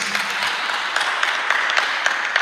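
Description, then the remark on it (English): A crowd applauds for Jesus at a speaker's prompt, many hands clapping at once in a dense, continuous patter with no voices heard, fairly loud and sustained throughout. “clap for Jesus.”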